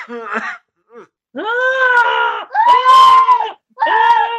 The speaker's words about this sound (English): This is the screams of people on fire.